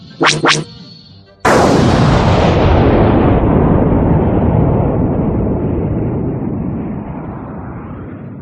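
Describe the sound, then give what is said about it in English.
Two quick, sharp starfighter cannon blasts zap out in succession, shooting down the two TIE fighters on Luke's tail, followed by a loud explosion whose deep roar rumbles and slowly fades over several seconds. No voices. “And with soft cannon blasts, there were no more TIEs on Luke's tail.”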